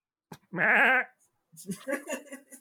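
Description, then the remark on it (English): A person mimics a giant goat with one loud, wavering bleat lasting about half a second, then follows with a burst of quieter, muffled vocal sounds. “that is a giant goat.”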